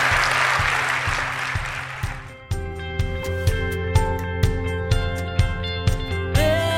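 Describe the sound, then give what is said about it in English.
A crowd of people claps together for about two seconds, a dense, steady burst of applause that fades as band music with organ chords and drum hits takes over. “Let's give them a clap offering.”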